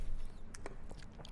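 A loud gulp with wet mouth clicks and smacks around it, a few short bursts over about a second and a half, with no talking.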